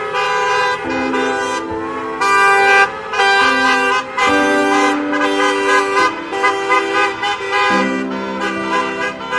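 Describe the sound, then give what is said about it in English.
Car horns honk repeatedly and loudly from passing cars, several overlapping in long and short blasts, drivers honking in support of a protest march, with traffic moving past. No one speaks. “I wave to passing cars, honking in support.”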